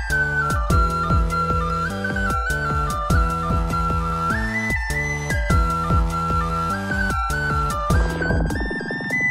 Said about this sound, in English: It's a very cheap sounding whistle, but it's what I had. And I just sat in my car and I recorded it, and then I put it in Audacity and clipped it.